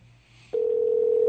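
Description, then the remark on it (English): After a quiet low hum, a steady electronic telephone ringing tone switches on abruptly and holds at an even pitch as an outgoing phone call rings out on the line. No one speaks. “They can hear that ringing.”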